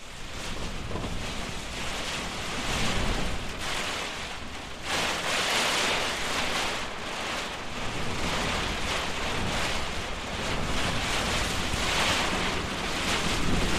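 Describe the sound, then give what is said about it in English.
A fierce storm, waited out from inside a hut in the Haast Range, roars without pause, heavy wind and rain forming a dense, loud rushing hiss that surges and eases in gusts for the whole stretch, with no voices. “during a break in the weather, but not until we had waited out a severe storm, which made us very glad to be in a warm, dry hut.”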